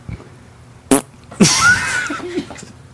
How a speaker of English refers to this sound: did you fart? Or did the candle fart because you lit it?